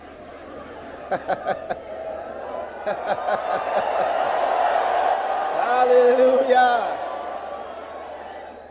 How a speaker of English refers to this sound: You may just be wondering, why is everybody making noise? Why the shouting? Well, you'd find out in a moment. Because you'd be shouting too.